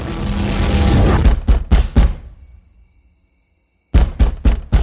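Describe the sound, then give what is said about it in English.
Loud pounding on a door at 2 a.m., three heavy knocks after a burst of noise, a pause of silence, then another rapid series of forceful knocks. No one speaks. “Open up! I don't want to knock this door down, but I will.”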